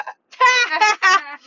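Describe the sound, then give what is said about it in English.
A person imitates a sheep's bleat, a wavering nasal "baa" voiced in three quick pulses, fairly loud, with no other sounds around it. “I'm not going to follow the sheep”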